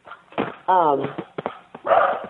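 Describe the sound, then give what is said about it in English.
A dog barks in a few short, sharp bursts, one drawn into a falling whine-like yelp, with brief knocks and clatter between them. “Oh, my dog's barking.”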